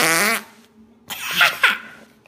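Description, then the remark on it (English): A loud, buzzy fart noise squelches from fart putty, then after a brief pause come a few wetter squishing bursts, all close and clear with no talking. “You dropped your fart putty in the dirt, something like that.”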